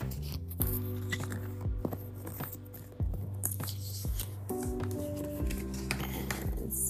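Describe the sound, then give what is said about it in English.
A deck of oracle cards (angel cards) being shuffled for a card reading, a run of quick papery riffles and slides with soft taps between them, steady and continuous for several seconds, with a low background hum and no talking. “So I'm just going to shuffle them up.”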